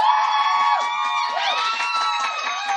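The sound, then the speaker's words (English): An audience cheers and whoops steadily for a few seconds, applauding the character Dr. Facilier making it onto the finals, with high shouting voices layered together at a fairly loud, even level and no pause in the noise. “I'm going to say the name of the character, and then you are showing your applause for them making it onto the finals.”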